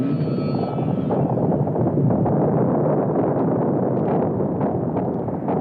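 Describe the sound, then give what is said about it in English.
A deep, loud earthquake rumble from the Good Friday 1964 earthquake at Valdez, Alaska, at 5:36 p.m., roars steadily for several seconds, a dense low churning with crackling grit on top; a thin high whine fades out in the first second. “At 5:36 p.m., the earth begins to rumble.”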